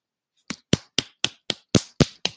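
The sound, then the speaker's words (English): Eight sharp hand claps in a quick, steady rhythm, fairly loud, with no talking underneath. “I just tried to take a minute to clap, but I'm not quite sure what that sounded like.”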